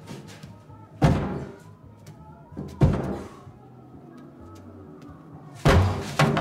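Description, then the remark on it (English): A door in a movie scene is slammed open hard three times at uneven intervals, each heavy bang ringing out briefly over a low, murmuring background. “Like, that last shot, I also, like, there's a part where, like, Hector, too, is, like, slamming open a door, and, like, on each slam, he zooms in a little further.”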